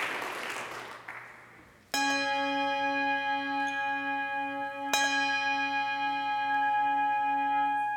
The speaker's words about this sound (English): Can you hear the harmonics? Is this one sound, or is it many sounds? Well, let me help you out just a little bit. The bell can actually vibrate in a lot of different ways. When you ring it in the normal fashion, like I've just done